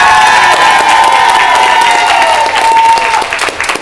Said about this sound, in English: Can you say this is the Big Finish podcast and let them cheer? Absolutely. Well, ladies and gentlemen, this is the Big Finish podcast. Yeah!